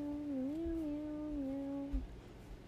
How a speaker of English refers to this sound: Someone has interrupted us. And it's meow. Meow meow.